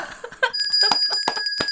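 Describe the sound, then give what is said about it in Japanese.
A bright ding-dong chime signalling a correct answer to a quiz question, a few quick ringing tones repeating over a sustained shimmer, fairly loud with no voices. “ピンポンピンポンでございます。”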